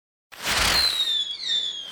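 sound effect, fireworks exploding

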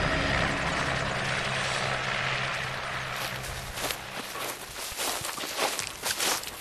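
vehicle, helicopter landing

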